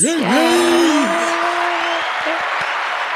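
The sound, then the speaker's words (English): Loud, dense applause sound effect that runs steadily throughout, with a high gliding whoop or cheer rising over the clapping in the first second before settling into a sustained tone. “So shall we do the little applause thing?”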